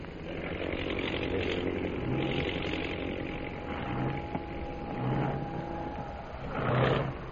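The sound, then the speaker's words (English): A propeller plane's engine drones steadily as it drops out of a formation and circles to land: a rough buzzing roar with a faint whining tone, rising and falling in several surges, with no voices. “Is dropping out of line and circling for a landing.”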